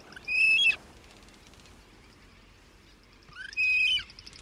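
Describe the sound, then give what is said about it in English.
Two bursts of harsh, chattering frigatebird calls with a rattling, buzzy quality, separated by a pause of faint background hiss, moderately loud, with no one speaking. “Soaring above the warm oceans of the world, frigate birds cut a distinctive profile.”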